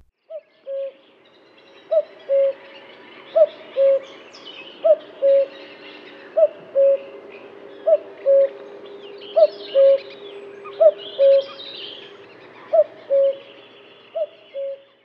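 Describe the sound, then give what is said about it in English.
A common cuckoo calls its two-note cu-coo over and over at a steady pace, about ten clear repetitions, with fainter birdsong twittering in the background. “And a child born on the day of the first cuckoo song, in spring, will be lucky all its life.”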